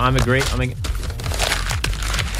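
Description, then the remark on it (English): Paper being torn and crinkled, a series of rough, noisy rips lasting a couple of seconds, with a voice talking briefly at the start. “Tear that paper.”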